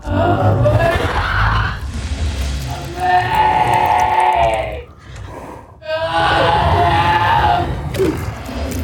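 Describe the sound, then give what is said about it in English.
A loud, strained scream-like wail in long sustained bursts with harmonic tones, broken by a brief dip: a bear creature imitating a woman's scream over a rough, growly undertone. “And he makes the sound of her screaming. It's not a bear roar.”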